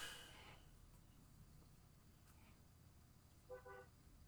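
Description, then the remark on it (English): A car horn gives a short honk near the end over a low, steady outdoor rumble on a residential street, with a brief louder burst of noise at the very start. Nobody speaks. “Somebody got honked at.”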